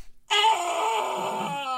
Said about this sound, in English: Wilhelm scream.